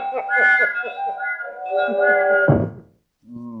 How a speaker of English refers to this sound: Now here we have the toy train department. Listen to them.